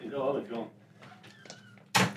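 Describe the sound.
A door opens as a late guest arrives, with a sudden loud, rough burst of noise near the end, following a brief stretch of muffled voices and quiet shuffling sounds.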